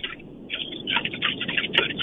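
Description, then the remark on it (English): Raindrops pelt a car in a steady, irregular patter of soft taps, heard through a muffled, narrow phone-like line, with one sharper tap standing out near the end. “You're probably hearing the pelting of raindrops.”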